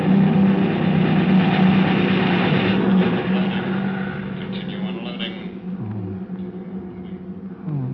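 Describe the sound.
Enemy Messerschmitt fighter planes attack, roaring overhead as they come in over a sand dune, in a loud, steady engine drone that eases slightly in the second half, with indistinct voices mixed in beneath the noise.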